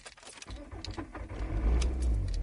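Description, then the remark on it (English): A car engine turns over and catches, its low rumble building and settling into a steady idle, with a few faint metallic clinks at the start and no voices. “Let's start the car up.”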